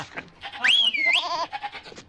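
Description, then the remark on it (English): Four goats bleat as they are turned loose, one letting out a loud, wavering bleat lasting about a second, with fainter bleats and farmyard noise around it. “Goats! Go! Sick 'em! Do your damn job!”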